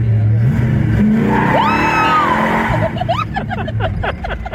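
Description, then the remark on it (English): An old car engine revs loudly, its pitch climbing and whining higher before settling into a rough, sputtering rumble with some clattering noise. “But yeah, it's just a neat old car.”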